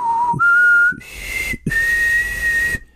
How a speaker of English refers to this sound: Because I believe in the previous episode we talked about the signal, right? Yep. Yeah. So she does the whistle.